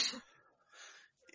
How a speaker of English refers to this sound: See, I'm coughing too. I'm still alive.